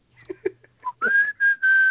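After a few faint, scattered noises, someone whistles a short melodic phrase from a song: a note gliding upward, then two long, steady held notes. The whistling is clear and fairly loud.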